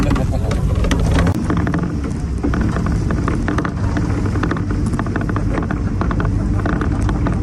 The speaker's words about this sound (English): On the bus ride to Machu Picchu. Glorious mountains.